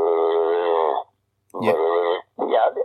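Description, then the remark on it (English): A person vocally imitates an unidentified animal heard while metal detecting, a sound like between a pig and a dog: a sustained, throaty growl lasting about a second, then after a pause two rougher grunting bursts, fairly loud, with no words spoken. “and then it started like a growl and then a grunting noise, and I thought, no, that's not a dog.”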